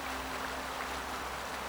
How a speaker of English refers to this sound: Eddies and currents spin across the surface of the river ooze as it glides along past buildings and bridges, parks and moored boats.